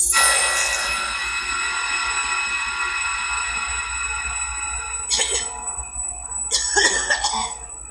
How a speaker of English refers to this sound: The guy's got a cough.